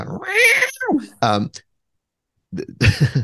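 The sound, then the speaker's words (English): A cat in heat outside in New York City yowls with long, wavering, drawn-out cries, two or three in quick succession. After a short silence, a person's voice follows briefly. “oh my God, there's a cat in heat outside.”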